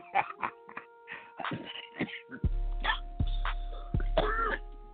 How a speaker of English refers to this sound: Coughing like I've been smoking some weed or something, but I have not. Sorry about that.